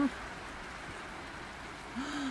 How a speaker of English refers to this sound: Well, they're going to walk right out here and they regret it because it's fucking raining.